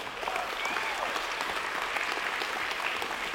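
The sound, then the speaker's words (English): A church audience claps and applauds steadily in praise, a dense wash of many hands at even loudness throughout, with faint cheering voices scattered within it. “Y'all gonna have to clap more.”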